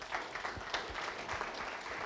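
An audience applauds steadily as a speaker makes her way forward to give a talk, many hands clapping at once into a dense, even wash of sound with no voices over it, holding a fairly constant level throughout.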